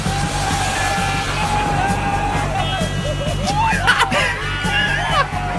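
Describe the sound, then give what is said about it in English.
A crowd of people sitting in recliners on the grass beside a flooded road in the rain, under a sign reading "splash us", whoops and yells with excitement over a steady rushing wash of noise as passing cars drench them, rising voices and high cheers swelling near the end as water splashes over them. “And cars drive by and just demolish them with water and they love it. Listen to their joy.”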